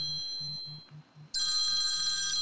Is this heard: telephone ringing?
yes